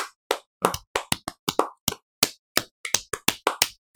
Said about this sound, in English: Oh, we got to restart clapping.